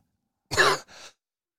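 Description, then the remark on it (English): A single sharp cough followed by a softer, breathy second burst, like a quick throat-clearing, with silence before and after and no talking. “Sorry, a little cough button there.”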